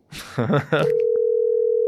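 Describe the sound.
A short burst of speech gives way to a steady, unbroken single-pitched telephone ringing tone that holds clearly and evenly to the end, as heard on an outgoing call.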